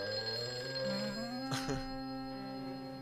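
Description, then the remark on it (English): A telephone rings steadily in the middle of the night with a bright, sustained electronic tone and layered harmonics, interrupted briefly by a short burst of noise midway. It sounds fairly loud, with no talking. “He's getting a phone call.”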